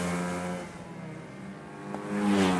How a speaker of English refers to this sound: The finals of the 2012 Irish Go-Karting Championship. Go-karts. They're toy-sized racing cars, about 6 feet long by 4.5 feet wide,